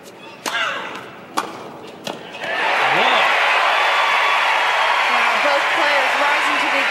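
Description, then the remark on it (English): A few sharp racket-on-ball thwacks ring out, then a tennis crowd erupts into loud, sustained cheering and applause after a player wins a point, roaring on without letting up, with scattered shouts in the mix. “The crowd exploded into cheers after Serena's opponent, Lindsay Davenport, won a point”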